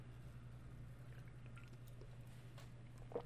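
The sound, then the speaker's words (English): Faint, soft mouth sounds of someone sipping and swallowing water: a few small wet clicks and a gulp near the end, over a steady low hum with no talking. “Now, a correct swallow is, I don't know if I've got any water here. I have, bear with me.”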